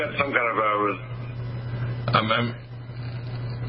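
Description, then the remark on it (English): A thin, band-limited voice comes over a phone line with a steady electrical hum beneath it, and a second, smeared burst of the voice follows a moment later like an echo. “Oh, there must be a speaker program. I'm hearing an echo there.”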